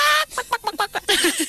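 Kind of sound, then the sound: vocal imitation, voice imitating chicken clucking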